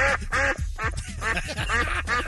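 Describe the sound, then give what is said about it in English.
Harsh, nasal squawks from a viola, its bow swung back and forth, sounding much like a mallard duck quacking, come in a rapid run of about eight loud strokes with no talking. “swinging that bow back and forth, making that sound.”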